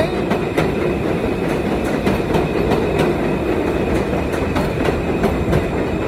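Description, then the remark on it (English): An M subway train rumbles past on elevated tracks by the Seneca M and Myrtle-Broadway stations, its steady low roar punctuated by rhythmic clicking from the wheels over rail joints, loud throughout. “That's an M train.”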